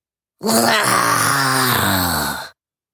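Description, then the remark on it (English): A creature, Pip, a small blue hairball, rolls over baring rows of razor-sharp teeth and lets out one loud, sustained roar lasting about two seconds, throaty and moaning with a wavering, gradually shifting pitch, heard alone with no talking. “RIZOS reaches over to grab Pip, but he rolls over and displays rows of razor-sharp teeth and roars.”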